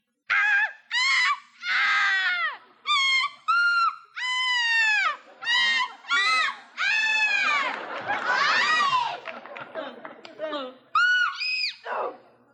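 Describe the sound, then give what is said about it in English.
Human voices imitate whooping crane calls, addressed to a whooping crane at night: a rapid series of loud, high, arching whoops that rise and fall in pitch, with several voices overlapping in the middle before a final few cries. “And this is what we said that night. To our friend, the Whooping Crane.”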